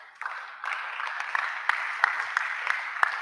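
A crowd applauds steadily, a dense wash of many hands clapping with a few sharper individual claps standing out at a fairly regular rhythm, moderately loud throughout.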